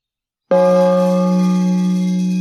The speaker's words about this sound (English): I have a brass gong I bang.